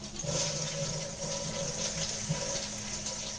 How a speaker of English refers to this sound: Sitting on a toilet, now flush.